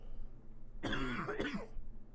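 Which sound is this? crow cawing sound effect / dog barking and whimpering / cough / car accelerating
cough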